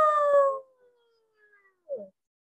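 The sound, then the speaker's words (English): A wolf gives a short, loud howl that slides gently downward in pitch and trails off, followed after a pause by a brief, rougher yelp. No voices. “I know who was making that sound. It is my friend, Wilbur the wolf.”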